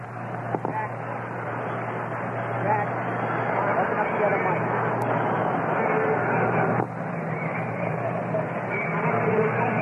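A dense, steady crowd roar at a baseball stadium as the Yankees take the field on a beautiful day, a broad continuous wash of many voices holding at a loud level with a low hum underneath and no distinct words.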